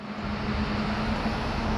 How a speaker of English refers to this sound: Hold on a second. Big noisy bus coming. Gotta pause it.